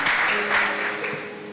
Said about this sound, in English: If you want to clap, clap well. You know, half clap is an attitude. If you want to do it well.